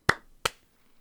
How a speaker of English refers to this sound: Wonderful. That was the most flaccid clap I've ever done. Jesus. It was a very Monday clap.